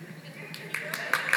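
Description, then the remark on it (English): A handful of sparse, evenly spaced claps from an audience after a speaker's statistic that a $32,000 yearly income puts one in the top 1% of wage earners in the world, about five sharp slaps building slightly louder over a low murmur of voices. “All right, that's the first time I've ever gotten any clapping.”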